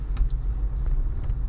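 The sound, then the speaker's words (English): Steady low rumble of a car on the road, heard from inside the cabin, with faint brief hisses of passing traffic over a constant engine and tire drone. “And traffic's been another story.”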